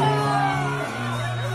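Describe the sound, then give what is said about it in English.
At a Las Vegas pool party, a crowd yells and cheers in one loud, sustained burst of voices, with a strong held shout that dips in pitch partway through, filling the whole moment. “Look at the cohort across that they're yelling at.”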